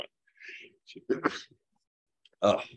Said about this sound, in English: little seasonal sneeze right there.